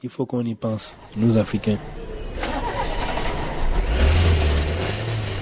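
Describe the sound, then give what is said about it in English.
A brief bit of voice gives way to a car engine turning over and catching, then a steady rumble that swells into a revving surge near the end, as a man gets in the car to drive to the gym after work. “gets in the car and goes to the gym to keep himself in shape before facing the next day of sport and business.”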